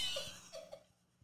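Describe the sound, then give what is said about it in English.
A voice imitates a small child's cough: a few short, quiet, breathy coughs in quick succession, with no talking over them. “Just no, the worst is when he coughs in your face.”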